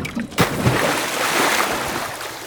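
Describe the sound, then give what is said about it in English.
A sudden splash as divers roll backwards off a boat and drop into the water, followed by a couple of seconds of churning, bubbling water noise. No one speaks. “Now, on my count, we'll just lean backwards and let ourselves fall into the water.”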